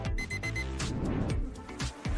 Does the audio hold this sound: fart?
no